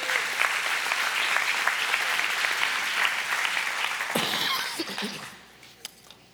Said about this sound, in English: Let's give a clap offering to the Lord.